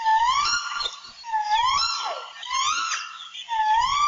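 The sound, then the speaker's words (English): Alala (Hawaiian crow) territorial calls: about four loud, drawn-out, nasal cries with a wavering rise-and-fall in pitch, repeated roughly every second with no voices present. “Some territorial calls that were once common in wild birds are no longer heard in captive ones, like this.”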